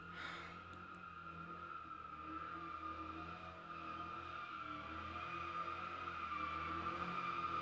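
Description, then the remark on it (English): A car engine revs hard outside, a sustained high-pitched whine and roar that holds steady for several seconds and grows slightly louder toward the end, with no voices. “This is revving.”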